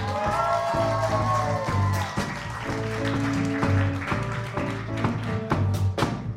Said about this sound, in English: Can we please give a round of applause to our judges,